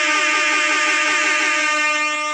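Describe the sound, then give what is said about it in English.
A loud, blaring hip-hop trap air horn sounds nonstop for about two seconds, signalling that 20 minutes is up, a harsh, buzzy, brassy tone with a slight wobble and no voices. “In the meantime, there's the hip-hop trap horns.”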